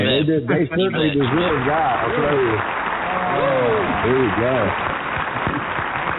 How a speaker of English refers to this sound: Let's give all the guys a nice hand, a clap for making a great song.